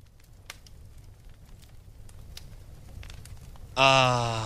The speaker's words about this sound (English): And let's just listen to the flames crackle as we discuss how amazing the tradition is of football on Thanksgiving Day.